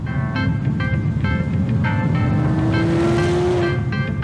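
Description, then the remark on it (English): The 5.5-liter V8 engine of a Chevrolet Corvette Z06 (eighth-generation C8) sports car, making 670 horsepower, roars loudly and continuously, its pitch climbing steadily as it revs, with a dense rumbling growl underneath and no voices. “It starts at around $110,000, and its 5.5-liter V8 engine makes 670”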